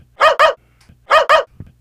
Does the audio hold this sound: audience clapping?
no